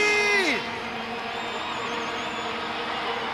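A crowd at Notting Hill Carnival cheers and whoops in a steady, dense roar, with a brief falling whistle-like tone at the start, then sustained mixed shouting at a fairly even loudness.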